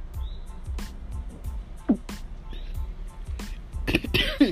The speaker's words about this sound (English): Yes, I'm still getting over my little cold, guys. Sorry about that. But I was trying to hold it. And my stomach was like, nope, cough, let it out. So I let it out.